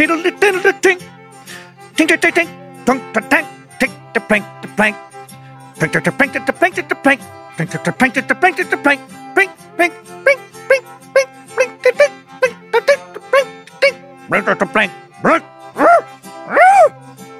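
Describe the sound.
A single loud voice imitates Cajun air banjo licks picked up from a Cajun course by the A-Hole Air Banjo Academy, firing off quick runs of twangy, plucked-sounding syllables in rhythmic bursts separated by brief pauses, with no real instruments.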